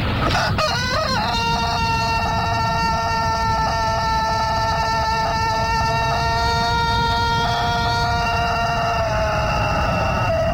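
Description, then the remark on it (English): A cockerel lets out one long, strained crow that holds a harsh, buzzing pitch for several seconds before tapering off, over a steady low rumble of background noise. “This is a cockerel and this is how he crows.”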